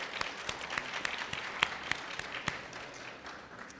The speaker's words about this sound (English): It is an honor to be here today, and it is especially an honor to be serving under our historical mayor, Buffalo's first African-American mayor. Let's give a hand clap for that history.